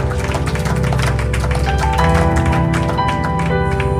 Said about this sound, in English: Amen. Give a clap unto the Lord.